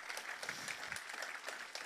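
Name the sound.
audience hand clapping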